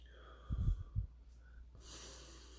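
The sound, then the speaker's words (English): A deep, audible breath is drawn in with a couple of low, snuffly pulses, then let out as a long, soft airy exhale. It is fairly quiet, with no talking. “We're breathing, right?”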